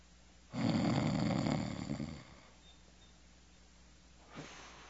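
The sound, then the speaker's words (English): A voice imitates a person snoring: one long, loud, rasping snore drawn out for nearly two seconds, followed by quiet and a brief faint breath. “I mean, they're snoring.”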